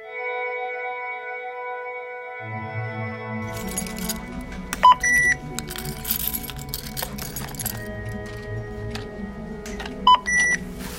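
Self-checkout scanner beeps at a CVS store, two short bright tones about five seconds apart, cutting through a steady electronic hum and background clinking and rustling.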